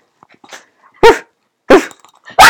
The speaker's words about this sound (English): He was just barking because he was just a happy puppy.